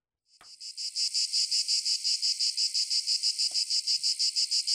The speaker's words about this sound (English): Are cicadas, the sound they make, relaxing? No. Not at all. Pretty sure they scream, don't they? Last I checked, they're not very, it's not a pleasant noise.